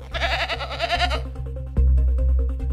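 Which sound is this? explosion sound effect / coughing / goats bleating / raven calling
goats bleating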